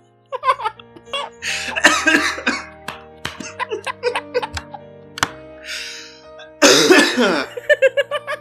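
A few small coughs come in two short bursts, close up and fairly loud, with brief breathy vocal sounds scattered between them and no speech.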